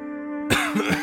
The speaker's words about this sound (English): And in strode a man, coughing and wheezing, tall and blue-eyed and shoulders so broad. He looked in such pain but chose to ignore it, and looked at me keenly